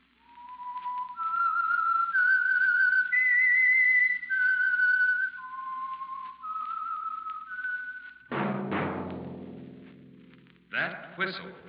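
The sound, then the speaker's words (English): A lone whistler carries the slow, eerie signature melody of the Signal Oil Program, The Whistler, in long, sliding notes for several seconds, clear, before a sudden burst of voice and accompaniment cuts in at the end. “Whistle is your signal for the Signal Oil Program, The Whistler.”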